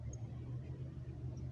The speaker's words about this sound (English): Did my car go by twice?